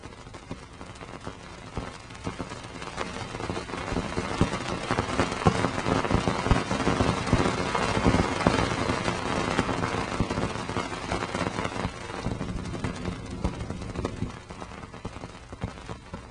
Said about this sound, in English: Afterward, you'll hear Cassini going through Saturn's rings.